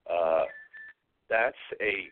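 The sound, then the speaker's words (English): A short, steady electronic beep from the speaker's phone, signalling another line ringing during a call, sounds briefly between bursts of talking that surround it. “What is this beeping sound coming from?”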